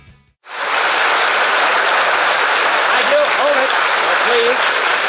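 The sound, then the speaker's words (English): After a brief near-silent moment, loud, dense audience applause bursts in and holds steady to the end, with a faint voice barely audible beneath the clapping toward the close. It is the audience of the Milton Berle Show on August 26, 1947, during its salute to railroads. “Now, please, no applause.”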